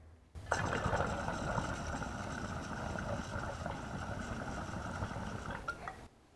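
Steady bubbling water gurgles through a honey jar recycler, a glass piece, snapping and popping through its sections, with continuous churning gulps and small pops under a bright, hissy layer, fairly loud and unbroken for about six seconds.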